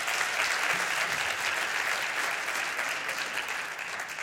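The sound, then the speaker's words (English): An audience applauds a couple being welcomed up, in a steady, dense round of clapping that stays fairly loud throughout, with no speech over it. “let's give them a round of applause first, and I'll tell you that.”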